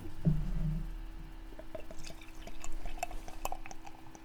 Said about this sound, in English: Glug, glug, glug, glug, glug, glug, glug. That's nice. That's coming out of a bottle, going into your fancy new glass. That's 15-ounce right.